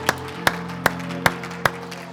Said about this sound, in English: Oh, give him a hand clap and a big shout. Hallelujah. Hallelujah.